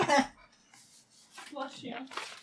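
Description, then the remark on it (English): A single sharp, breathy sneeze bursts out at the start, then fades into soft rustling before a person briefly murmurs and talks. “Bless you.”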